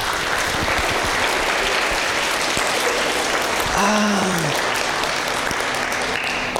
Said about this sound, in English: Do you want to clap for all of them?